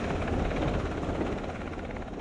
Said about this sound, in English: A helicopter takes off from the deck of the Curtis Wilbur.